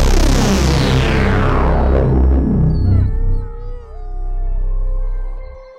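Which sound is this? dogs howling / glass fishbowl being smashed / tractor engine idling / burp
dogs howling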